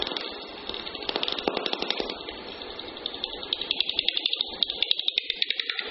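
Rapid, regular high calls of a Daubenton's bat, a bat that flies along water, crackle as clicks through a bat detector, quickening into a dense pattering stream of short dry ticks with a faint hiss beneath, sharper and higher-pitched than a slow tapping.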